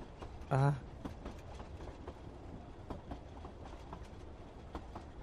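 A train rolls along with a steady clickety-clack of wheels over rail joints, opened by a brief, loud horn-like blast near the start, then continuous rumbling and rhythmic clacks.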